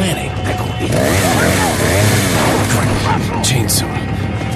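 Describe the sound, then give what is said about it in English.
A chainsaw wielded by an enemy villager in a video game revs loudly and continuously, its buzzing pitch rising and falling, amid a dense, noisy game scene with voices shouting over it. “Fuck that chainsaw guy, man.”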